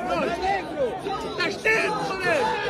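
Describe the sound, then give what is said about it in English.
A concert crowd going wild as someone is about to jump off the stage, with many overlapping voices shouting and cheering in a dense, steady roar across the whole clip, rising slightly in loudness toward the end. “Concert. No. Crowd going wild, time to jump.”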